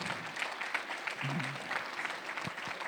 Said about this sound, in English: Yeah, no standing. We only clap.